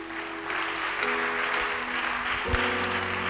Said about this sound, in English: When there's a simple road, devoid of confusion, pay your tithes. I thought you'd clap.